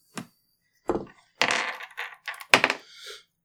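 A six-sided die (d6) is rolled onto a table and comes up one: two sharp, separate knocks, then a busy run of rattling, tumbling clicks that fades out after a few seconds, with no talking.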